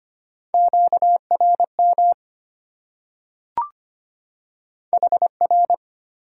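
A steady, mid-pitched Morse code tone keyed at 25 words per minute in quick dots and dashes, with a short pause broken by a single click before another burst of code.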